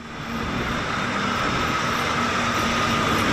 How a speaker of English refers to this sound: The cordons are now lifted and the busy North Shore bus station is back up